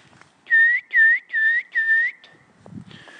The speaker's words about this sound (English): it said, first of all, you learn to whistle. Well, that doesn't take too long. You just have to blow.